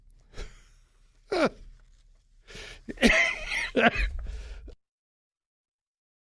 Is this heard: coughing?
yes